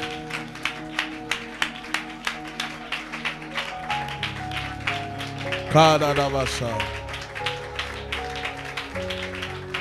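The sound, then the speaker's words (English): Steady, rhythmic hand clapping during a prayer, sharp claps at a brisk even pace, over a droning musical backing with a voice rising and falling partway through. “Any attack upon anybody in my family, as I clap my hands and as I pray, I destroy that attack I destroy that attack.”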